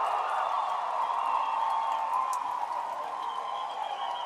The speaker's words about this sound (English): That's going to bring a great big cheer from the Moody fans as Jason, at the behest and direction of the first base coach, attempted to get a little more than what was there.